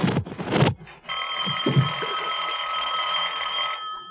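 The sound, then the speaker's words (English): A telephone bell rings in one long, steady trill that starts a second in, following a couple of brief clattering noises, with a few soft low thumps underneath. “I better answer it. It might be the operator.”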